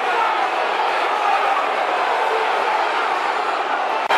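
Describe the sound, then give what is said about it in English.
A dense, steady roar of the Mill football crowd urging its team to get the ball forward during injury time at the end of a match, loud and unbroken for several seconds, a wash of many voices shouting together with no clear individual words. “Crowd urging the ball forwards.”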